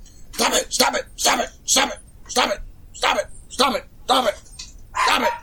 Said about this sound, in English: Stop it. That's what the dogs are saying.